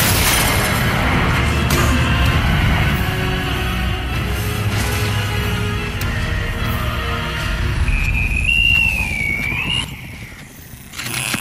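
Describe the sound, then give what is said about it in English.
Aircraft landing gear is deliberately dumped, dropping away and crashing in a loud, sustained roar of rumbling, grinding impact noise, with a thin high whine rising near the end before the din briefly dips. “I'm dumping the landing gear.”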